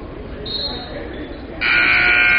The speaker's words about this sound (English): They put a jump shot up from the free throw line, but we had a buzzer, and the referee finally stops play and says, you know what, I shouldn't have thrown it in.